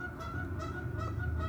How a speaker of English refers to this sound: That's the goose. But now there's another one on the roof. They're recruiting.